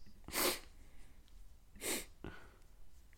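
Two sharp, breathy sniffs about a second and a half apart, followed by a faint short click, with no talking.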